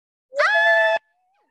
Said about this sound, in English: Sorry for screaming. 1 year of SLP.